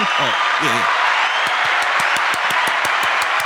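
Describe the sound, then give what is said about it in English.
A canned applause effect played from a soundboard button: a steady wash of crowd clapping with a couple of high whoops at the start, then sharper individual claps pounding out a quick, even rhythm. “Applause to her on that.”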